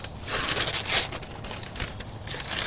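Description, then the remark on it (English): Paper crinkling and tearing as a box is opened, a continuous rustle with brief louder rips, heard alone with no one talking. “What is in that box”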